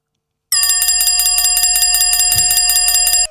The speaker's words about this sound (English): That's actually a good buzzer. Oh, that was all right. It's a different one every week because you still haven't managed to put it on.